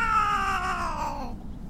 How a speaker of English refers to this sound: Whoa! What the... It's the cat from the alley.